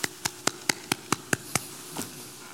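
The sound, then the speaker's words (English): A polite golf clap: about eight light, evenly spaced claps at a quick, steady pace, sharp and crisp, fading out with a faint softer sound at the end. No one speaks. “And there's a phrase that I use occasionally, and it's very apropos here, and that is we give God the polite golf clap.”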